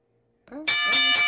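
A bell is rung loudly after a brief silence, with about three quick, bright metallic strokes blending into a sustained, shimmering ring that carries to the end.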